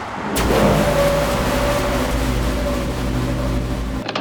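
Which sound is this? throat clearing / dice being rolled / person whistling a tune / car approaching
car approaching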